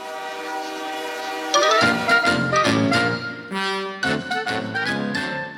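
A train horn sounds in long, loud, sustained blasts, its overlapping tones shifting pitch a few times as the train rumbles by. No one speaks.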